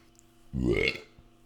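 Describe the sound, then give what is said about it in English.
A single loud burp lasting about half a second, deep and throaty with a rough rising edge, standing alone against a quiet background. “See, I didn't burp all episode.”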